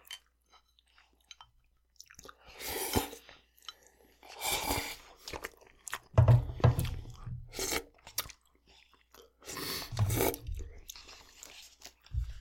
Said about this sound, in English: I've gotten okay at eating noodles with chopsticks. I'm not the best, but I feel like I've developed.